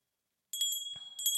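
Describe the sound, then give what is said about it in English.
A small bell rings in two quick bursts of bright, tinkling strikes, its high tone lingering between them. It sounds moderately loud, with no one speaking. “I'll ring my bell.”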